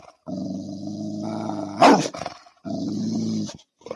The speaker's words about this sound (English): I got Perk Dog gets his own sound effect because he's a dog.